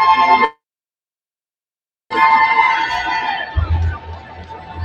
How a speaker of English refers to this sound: I don't know who they're cheering for.